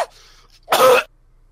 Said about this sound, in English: Because, sorry, I'm... one sec, I got a little cough.